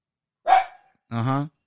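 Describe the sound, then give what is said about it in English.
Two small chihuahuas bark in quick succession: first a sharp, raspy yap, then after a short pause a higher, more drawn-out tonal bark. No one talks over them. “Now back to what I was saying before I was rudely interrupted by my two chihuahuas.”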